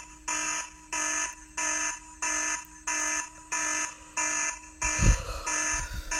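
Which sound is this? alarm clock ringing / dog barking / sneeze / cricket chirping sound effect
alarm clock ringing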